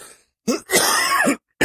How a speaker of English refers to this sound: But hold on, I got a cough.